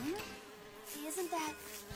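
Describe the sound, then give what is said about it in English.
A bug buzzes steadily with a droning, wavering whine that rises and dips in pitch, faint but continuous with no one talking. “Does that bug just follow him now for the rest of his life?”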